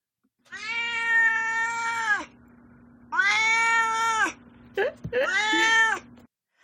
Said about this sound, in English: Now it's time for Duarte's Corner again, where my cat Duarte shares his opinions about the book.